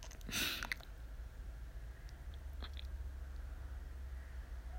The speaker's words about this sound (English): And that's, sorry if I keep sniffling, that's gross, but it's raining outside. I don't know what this is. If this is a nasal drip, I have no idea. But my apologies.